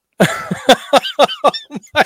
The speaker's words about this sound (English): I'm here for the mouth coughs. Good stuff.